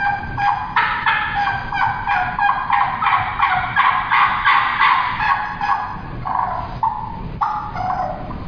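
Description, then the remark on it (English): A turkey call imitates a turkey in a hunting demonstration, pouring out loud, rapid gobbling bursts almost without pause for several seconds, then a few shorter clucking notes near the end. No one talks. “I just called a little more there to demonstrate.”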